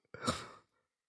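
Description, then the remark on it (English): A single short burp, about half a second long, with a rough, low, throaty rasp that swells quickly and fades, heard alone without any talking. “Nice burp.”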